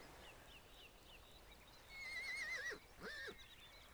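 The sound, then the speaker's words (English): A horse from a herd grazing in an open valley whinnies twice in quick succession, a long quavering neigh followed by a shorter one, over a soft outdoor background with no talking. “As you continue to observe the herd of horses, you notice a sense of unity among them.”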